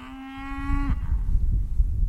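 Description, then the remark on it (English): A single cow moos, a steady low bellow of about a second that sags at the end, then gives way to a low, rumbling outdoor noise like wind. “have collared some of these cows and bison with tracking devices to follow their grazing patterns.”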